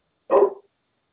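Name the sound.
dog barking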